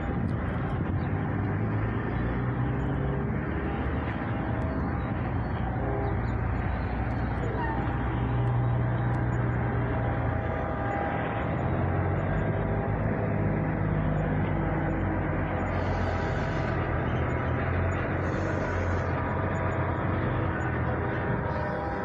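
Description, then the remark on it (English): A train approaching railway tracks rumbles steadily, a heavy low roar with a dense mechanical hiss layered over it, holding an even loudness throughout without any clear rise or fade. “It definitely sounds like a train's coming, but hey.”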